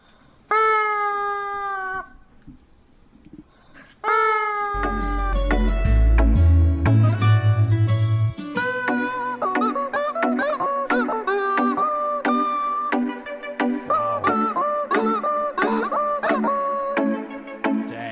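On The Fitz Show, a rubber chicken is squeezed as a musical instrument to play a wheezy, honking tune, its high harmonic squeals rising and falling in a melody of short and sustained notes, with a low rumbling thump beneath some passages.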